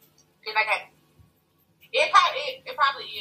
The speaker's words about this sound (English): I don't know if my phone breaking up or what. It's probably you.